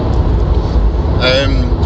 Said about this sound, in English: Okay, guys, just on the way back now from the Warlords event. Just in the car